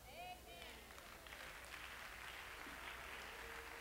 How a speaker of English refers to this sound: Amen. You don't believe that? That's just a little old happy religious clap.